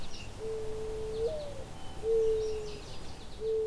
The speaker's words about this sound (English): The mourning dove is a common and also very quiet bird.